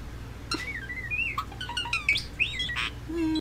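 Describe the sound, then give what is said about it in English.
A pet bird named Jabba chirps and whistles in a busy run of bright, rising and falling calls, broken by a few harsher squawks, fairly loud with no talking. “I wish this bird no harm, but I wish for its life not to intersect with mine.”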